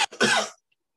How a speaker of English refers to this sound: It came out of you, big guy. I coughed. What? I coughed. Okay, anyway. You coughed.